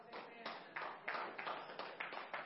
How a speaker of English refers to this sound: Now, I appreciate you guys clapping because it's true, but recognize the responsibility that comes with that.